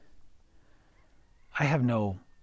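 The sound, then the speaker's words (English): After a stretch of quiet outdoor ambience on a back patio at sunrise, a chicken lets out a single loud cluck-like squawk lasting about half a second, then the scene falls quiet again. “I hear nothing but chickens and my dog walking, and I'm looking at the sunrise.”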